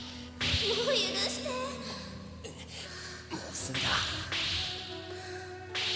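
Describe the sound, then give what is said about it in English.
Several sharp whip cracks snap out at irregular intervals, loud, mixed with breathy gasps and vocal sounds over a steady background tone: in what looks like an anime, a man whips a pink-haired cat girl pulling a cart, using the reins, in a desert. “So a guy is whipping a girl with a whip.”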